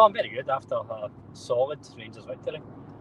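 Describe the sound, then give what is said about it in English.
Steady low rumble of a car cabin at motorway speed on the M8, driving from Easter Road back toward Ibrox, runs throughout, with a person talking continuously over the droning road noise. “If I'm speaking more nonsense than usual, it's because I'm driving and I've already had some constructive criticism on my driving today, so my priority is getting us back along the M8, but...”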